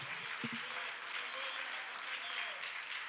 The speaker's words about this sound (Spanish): Fuerte ese aplauso, gracias, hermano, para el Señor Jesucristo. Bien, fuerte ese aplauso.